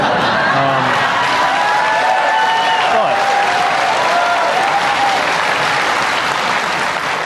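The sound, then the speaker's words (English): A large crowd applauds Buttigieg steadily, a dense, sustained wash of clapping at an even, loud level, with faint cheers and whoops rising above it throughout. “Having won huge applause twice, Buttigieg then pivoted into actual bread and butter issues like wages and healthcare, drawing a serious distinction between Republicans and Democrats.”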